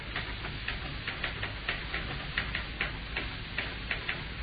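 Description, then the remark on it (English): Typewriter keys tap in an uneven stream of sharp, dry clicks, a few each second, over a steady low hiss with no voices, the keys punched by trembling fingers. “The sound of the tapping of the typewriter keys is like knuckles on wood.”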